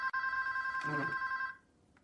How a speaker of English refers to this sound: Hey, that could be Cheryl. You'll get it later. We don't answer the phone at dinner.